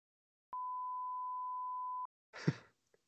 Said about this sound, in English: This is like the hot gossip, the bonus content. You just stand up and a long beep over it.